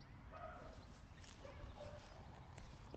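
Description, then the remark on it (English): A dog barks a few times in short, scattered bursts, sounding muffled over a steady low background rumble, with no one talking. “Max, come here, leave that dog alone.”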